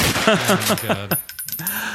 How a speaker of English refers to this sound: There we go. Nope, that's a gun, not an explosion.